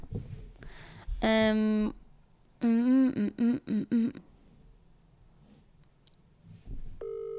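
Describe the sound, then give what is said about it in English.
A phone line sounds a steady electronic tone, then a quick run of dialing beeps, followed by a short ringback tone near the end, with faint background murmur between. “So right now we're gonna jump into the call segment.”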